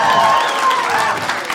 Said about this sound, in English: What kind of a crowd do we have? Are we married folks? Married people? Round of applause?